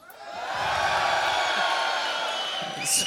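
An audience in a hall at the Molde football club kickoff at Bjørnsonhuset in Molde cheers loudly, with a dense wash of clapping, shouting and high whoops that swells quickly and holds steady for about three seconds.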